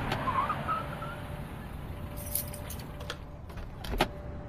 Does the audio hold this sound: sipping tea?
no